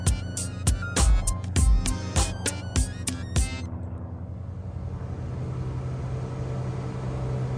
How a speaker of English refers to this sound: A beautiful spring day, a single propeller aircraft smaller than the clouds rises into the blue.